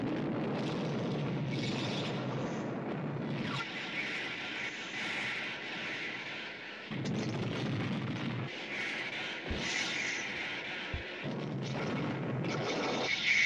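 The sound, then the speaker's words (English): Loud, continuous booming movie pyrotechnic explosions with heavy low rumble and crackling, surging in waves across the whole stretch, punctuated by a couple of sharp impacts near the end. No one speaks. “God, the fireworks budget on this is amazing.”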